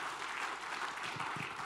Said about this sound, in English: Remember, give him applause as he comes up. Welcome him. We welcome you guys.